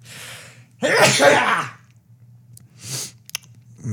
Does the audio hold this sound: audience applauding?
no